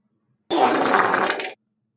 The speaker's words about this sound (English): That was an actual lion fart.